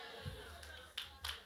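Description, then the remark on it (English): A few scattered claps from an audience, three sharp hand claps spaced unevenly over a low steady hum, with faint background murmur. “I didn't ask you to clap, so if you are clapping, do it better for God.”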